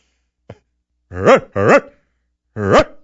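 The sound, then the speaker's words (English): A dog gives three loud barks in a loose rhythm, the first two quickly paired and the third after a short pause, preceded by a faint tap. Nobody speaks. “That makes the dogs bark.”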